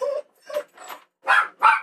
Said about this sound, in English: So many dogs. There's dogs off in the background barking.